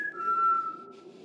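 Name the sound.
short whistle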